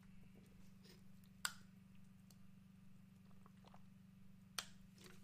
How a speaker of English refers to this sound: So mighty, I need to take a swig of my water first. Hold on.